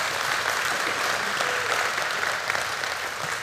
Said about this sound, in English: And yeah, we can give the Lord a hand clap for that.